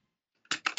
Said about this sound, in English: And we're also going to do point man prayer, where Alan takes a list with his loud keyboard. And there it goes. You hear it? Give me one more, Al.